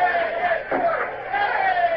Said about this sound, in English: What are those idiots cheering about? From the noise they're making, you'd think they'd won Trafalgar.